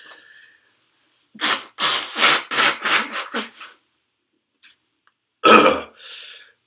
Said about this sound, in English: Excuse me, I'm blowing my nose again.